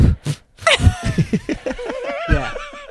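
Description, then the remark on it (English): A voice imitates the heavy, focused breathing someone makes when concentrating: a few sharp breathy puffs, then a string of rhythmic, wavering voiced huffs that sound almost like snickering, moderately loud throughout. “It's the breathing when I'm concentrating. What does the breathing sound like?”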